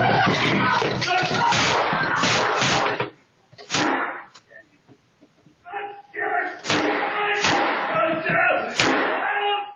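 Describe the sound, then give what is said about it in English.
Several sharp, loud handgun shots crack out at irregular intervals amid chaotic rustling and indistinct raised voices, with a brief lull partway through; a man takes the handgun from a shoulder holster, it discharges once as he charges it, then more shots follow as he advances into a house. “The firearm discharged, so you hear one shot, but you also see him advancing into the house, and then you'll hear some subsequent gunshots.”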